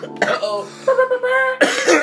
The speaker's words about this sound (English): I mean, to me, it's really just you want to catch me in the middle of the cough.